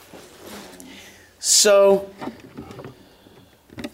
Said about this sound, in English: There's a little creak here. I'm just going to move this chair. A little creaky floor.